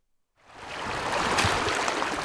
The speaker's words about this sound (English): In a forest of blackened skeletons of trees, there's a river flowing where there used to be a road. There's no way around it! We're in the mountains of northern New Mexico. Snowmelt is rushing over the scorched ground from last year's historic fire.